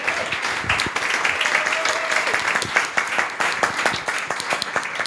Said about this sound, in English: Oh my God, this applause is amazing. It's going to sound great on the audio, isn't it? I love this.